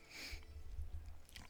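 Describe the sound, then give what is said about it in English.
A brief sip of beer, finishing a first beer, a soft airy slurp followed by a faint swallow, with low handling rumble and no talking. “And that concludes my first beer right after this sip.”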